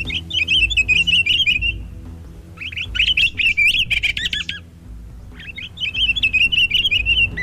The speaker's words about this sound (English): Here are three songs sung by one pine grosbeak male.